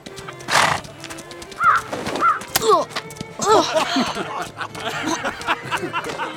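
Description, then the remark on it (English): A bird calls repeatedly in short, squeaky chirps that rise and fall, clustered in quick bursts, with a brief whooshing rustle near the start and faint background noise throughout. “I think that bird likes you.”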